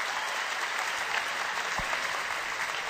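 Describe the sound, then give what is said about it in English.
A sustained round of applause from a crowd, dense and steady for the full three seconds with no one speaking over it. “Let's give him a roaring round of applause for that.”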